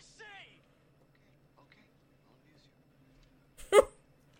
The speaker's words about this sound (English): There goes my dog, sorry. Your dog scared you. Yes, because he just started barking for no reason.